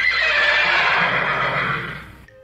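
A horse lets out one loud whinny lasting about two seconds, its shrill quavering cry tapering off at the end. No one speaks.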